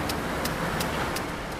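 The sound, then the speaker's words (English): Steady outdoor rumble of vehicle traffic fills a dusty concrete yard on a tiny island in the Fraser River between Vancouver and Richmond, Canada, with a faint, regular high ticking repeating roughly three times a second throughout. No one speaks. “Here, in a dusty yard, you can see all the ingredients that go into making concrete.”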